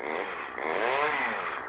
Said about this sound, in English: There's a chainsaw.